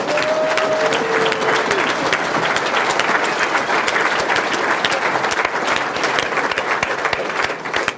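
Sustained applause from a large audience at a debate, applauding two men for sitting down face to face to discuss their differences: a dense, steady clatter of many hands clapping at an even loudness throughout, with faint crowd murmur beneath.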